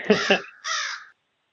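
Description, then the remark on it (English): A raven caw sound effect: two quick, harsh, loud croaks followed by a longer, rasping call, then silence. No other sounds accompany it. “So I like that Raven effect.”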